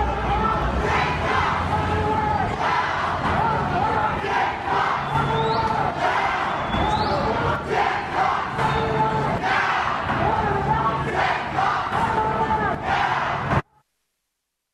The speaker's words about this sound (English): I want you to listen to the sound of the crowd size with that.